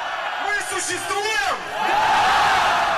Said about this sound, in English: "We exist," the crowd shouted back. Alexei Navalny told them they mattered.